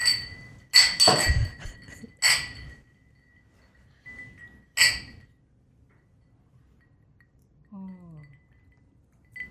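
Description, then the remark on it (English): Glasses of G and J cocktails clink together in a toast, several sharp, bright chimes, each leaving a faint lingering ring, with a brief soft vocal sound near the end. “Cheers. Cheers.”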